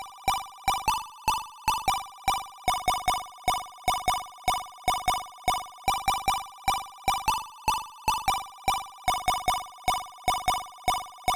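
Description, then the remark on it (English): A buzzy square-wave chiptune lead plays a melody alone, quick repeated staccato notes in a steady rhythm with shifting pitch, each note ringing with a slightly wobbly sustain. “So unlike the Commodore 64 version, each of these voices are all square waves this time, which gives us a slightly different sound, but it's not too dissimilar.”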